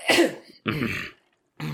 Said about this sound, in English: Well, while we're all coughing.